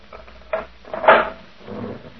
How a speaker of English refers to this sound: You may open the cell door for me, Sergeant.